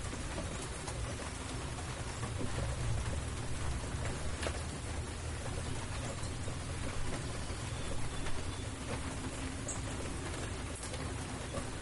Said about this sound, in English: Well, now the rain's really coming down and there's kind of a mist out in the field.